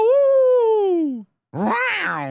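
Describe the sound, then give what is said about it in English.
A voice imitates an injured wolf man: a long, sliding groan that falls in pitch and fades, then after a short pause a rougher, strained wailing moan with wavering pitch. “That's an injured wolf man.”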